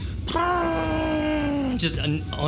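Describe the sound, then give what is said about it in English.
A voice mimics a deflating whoopee cushion: one long, droning groan that slowly sinks in pitch for over a second, loud, ending in a short breathy burst. “Just a deflating, like, whoopee Good. Cushion or something.”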